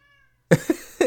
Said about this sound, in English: Can you hear the animals outside of this door right now trying to get in here? No. Okay. I can, at least. I can hear a cat. At least one cat. Just got one. Yep, just heard one.